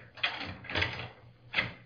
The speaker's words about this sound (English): Gentlemen, open the door, please.